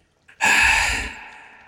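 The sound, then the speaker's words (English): A voice imitates the Witcher heavily panting after combat, with one long, loud, breathy exhale after a short catch of breath, fading out slowly. “The Witcher's like panting and just like,”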